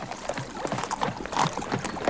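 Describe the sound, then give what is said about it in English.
Horses' hooves clop in a quick, irregular run of hollow knocks as the king's horses, comrades, wagons and supplies cross a bridge formed by creatures across the water, steady with no talking. “The king, his comrades, his horses, the wagons and supplies.”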